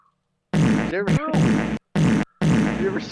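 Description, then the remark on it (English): A loud fart rips out in three sputtering bursts with short breaks between them, raspy and buzzing with a few squeaky rising tones. “You're literally breathing in somebody's shit particles, but somehow my fart is a problem?”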